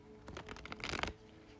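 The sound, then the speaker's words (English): A deck of tarot cards being shuffled, a quick burst of rapid papery flicks that builds over less than a second and stops abruptly, then quiet. “All right, Cancer, as I'm just doing a few more shuffles.”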